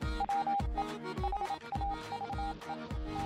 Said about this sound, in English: Apparently, the only way we can get geeky, nerdy news is via Morse code. Makes sense. But yeah. Yeah, I like that. Yeah. Like it's literally like coming over the wire.